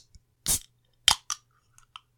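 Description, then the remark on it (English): A sparkling water can is cracked open: a short fizzy burst, then a sharp metallic crack and a smaller click, with faint ticks trailing after. No one speaks. “Let's hear that creaky flavor crack. Sparkling water. Let's crack this baby open.”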